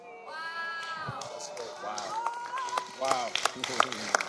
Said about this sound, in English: Wow. You're clapping. Let's get the YouTube people. The YouTube people are clapping better.